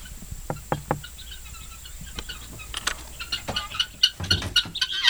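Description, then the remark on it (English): Three quick wooden knocks, then a growing chorus of harsh, rhythmic calls from guinea fowl coming out of their coop on a farm, several black, white-speckled birds chattering over one another and getting louder toward the end. “This is the house of the guineas, and now it's time for them to come out.”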